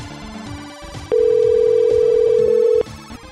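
A telephone rings with one loud, steady electronic tone lasting under two seconds, prominent over quieter background music.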